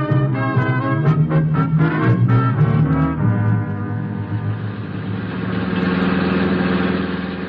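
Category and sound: vehicle, car engine idling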